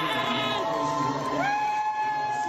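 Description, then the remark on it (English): A crowd of abortion rights activists in Kansas cheers loudly and continuously, with overlapping high-pitched shrieks and whoops rising above a dense roar of voices, reacting to the state's vote on abortion rights. “Amid all the recent doom and gloom, though, Democrats finally had some reason this week to cheer.”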